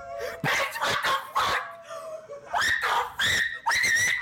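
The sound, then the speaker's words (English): A screaming sound effect: a rapid run of shrill, high-pitched shrieks, loud, with the last few cries swooping upward in pitch. No one talks over it. “That's your screaming”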